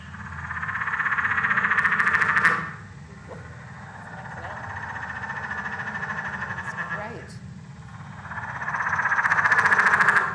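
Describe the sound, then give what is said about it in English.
A voice mimics a tree frog call: a loud, raspy, buzzing croak held for a couple of seconds, a quieter stretch, then another long rasping burst near the end. “I'm super excited because this is one of my favourite frogs. They have that sort of cross-shaped pupil.”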